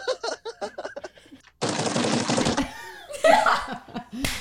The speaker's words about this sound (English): Did you just bang on your desk?